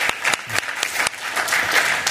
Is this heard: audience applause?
yes